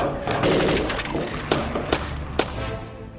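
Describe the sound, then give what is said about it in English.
Gunfire over a rough, noisy background, shooting at attackers climbing up the side of a fire truck: a dense rattling burst at first, then three sharp, loud shots fired one by one at uneven intervals. “One by one, a new one would figure out a way to climb up the side of the fire truck, and we would shoot it off.”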